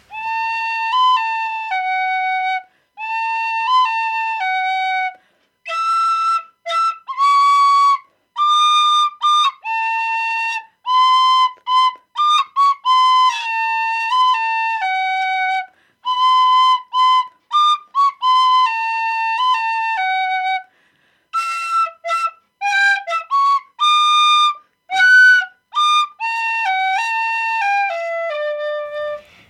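A tin whistle plays a lively melody of clear, high, bright notes with quick ornamented runs and brief pauses between phrases, heard alone without any voices.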